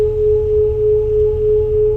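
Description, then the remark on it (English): Beating tones alternating with the humming of a machine and the sound of water: a steady, loud hum with a bright sustained tone on top, swelling and fading in slow regular pulses, about four gentle beats across two seconds, giving a whooshing, wavering effect. “This kind of a whooshing effect, which I like very much.”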